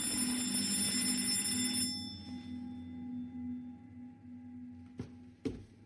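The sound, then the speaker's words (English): A doorbell rings with a bright, buzzing electric tone for about two seconds, then stops, leaving a low lingering hum before two sharp clicks near the end. No one speaks. “Which was, yeah, when my doorbell rang.”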